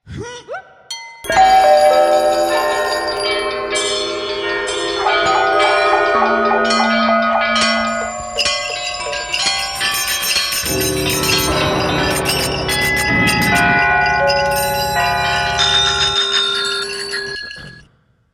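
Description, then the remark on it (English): A dense cluster of bells attached to a person's leg rings and jingles together for about sixteen seconds, loud, with overlapping chiming tones that sustain and shimmer before fading out abruptly. No one speaks. “Pull the other one, it has bells on.”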